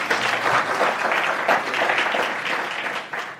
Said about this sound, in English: How many are happy for the sound guys? They're doing a tremendous job. Let's just give them a clap of hands.